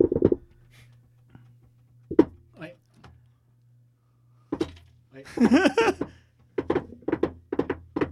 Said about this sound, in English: The knock you have to do has to be in triplets at 120 BPM. I can't even do it.